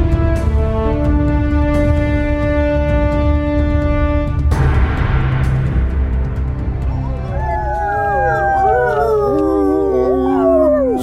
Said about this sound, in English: howls once again in the midst of Fangwoods.